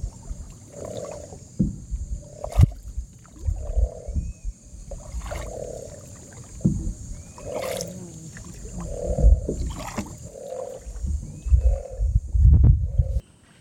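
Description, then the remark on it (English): A tiger heron calls with a steady series of deep, hoarse, roar-like grunts, about a dozen repeated at a fairly even pace over a low rumbling boat and water background. “Here you can hear the sound of the tiger heron.”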